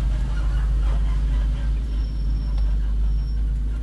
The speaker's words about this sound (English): Bus is coming.